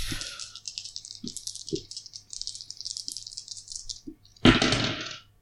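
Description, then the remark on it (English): Dice rattle continuously for several seconds, with a few sharp clicks mixed in, then tumble out in a louder, brief clatter near the end. Fairly clear, with no talking. “That's the most cocked I've ever seen a dice.”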